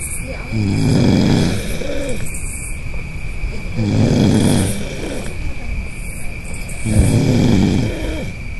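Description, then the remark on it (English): Two sleepers snore in alternation in camp at night, three loud rasping snores arriving about every three seconds, with a faint steady hum and insect-like chirping beneath. “We had dueling snores. I'm going to go ahead and play those here.”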